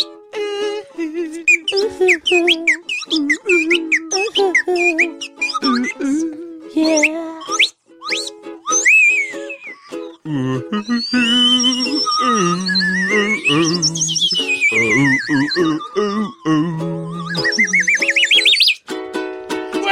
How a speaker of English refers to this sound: Slide whistle solo, accompanied by some ooze.